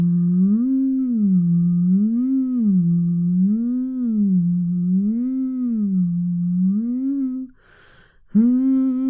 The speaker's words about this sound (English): Welcome to episode 11 of the Madiva Madvent, the Advent vocal warm-up. Today we're just going to do some humming. Let's do some up-down humming.